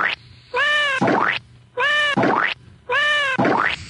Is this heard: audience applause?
no